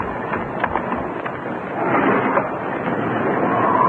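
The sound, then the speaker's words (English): A stormy wind roars and rushes steadily around a moored boat, swelling louder about halfway through, with a low rumble churning underneath and no voices. “The wind's come up.”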